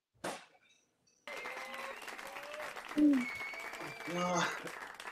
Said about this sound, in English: It seemed like you got less claps for yourself